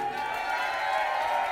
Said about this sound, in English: It was going to be a gloriously exciting opening with the cheer. I said, thanks for the cheer.